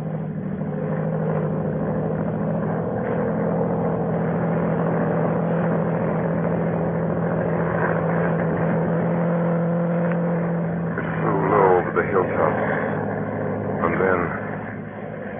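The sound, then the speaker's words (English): A propeller monoplane's engine drones steadily as it climbs low in the southern blue evening sky, a constant, moderately loud hum with a rich low tone; near the end a voice briefly rises over the engine noise. “Low down in the south, a monoplane was climbing into the heavens.”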